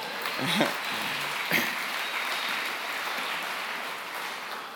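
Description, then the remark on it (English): A church audience claps in a steady, dense wash of applause that carries on for about five seconds, with a couple of brief voices calling out near the start. “And that would either be a great spot for an amen or for you guys to actually start clapping if you want.”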